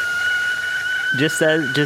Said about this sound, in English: And I think, is that the kettle I hear? Is it ready?